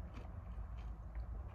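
Crunchy chewing of popcorn, a steady run of soft crackling bites repeating every fraction of a second, fairly quiet with a low rumbling undertone and no talking.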